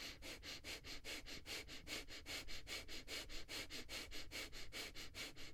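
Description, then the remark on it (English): Fire breathing exercise: a rapid, steady train of forceful nasal breaths, about four sharp huffs per second, each a short hissy burst, continuing evenly with no talking. “That's fire breathing.”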